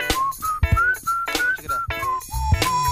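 A clear whistled tune of several short notes rising and falling, steady and moderately loud, made by a person whistling without moving their lips, with soft tapping sounds in the background and no talking.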